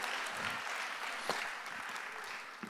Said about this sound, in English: Specifically this weekend, there's some pretty good teaching. You can clap, it's fine.